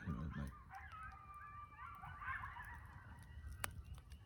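Wild turkeys calling less than 100 yards from a bonfire, a cluster of faint overlapping yelping calls over a few seconds against a quiet outdoor background, with no one talking.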